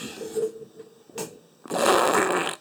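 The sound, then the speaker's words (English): An audience blows a collective raspberry, imitating a fart noise. A low buzzy sputter comes first, then a louder, rough blast lasts nearly a second. “Yeah, the audience made a collective fart noise.”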